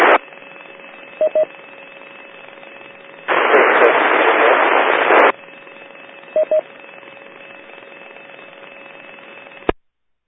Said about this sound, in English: There was a station calling with just static. Give it another try.